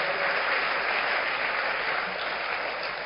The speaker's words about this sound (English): Why don't you clap your hands for the Lord?